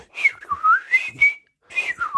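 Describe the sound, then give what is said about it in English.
A person whistles an imitation of blackbird song: two fluid, warbling phrases that slide up and down in pitch, separated by a short pause, with no talking. “I mean, clearly it would know that you were not a blackbird and that you'd got it wrong or that you were a completely weird sort of blackbird.”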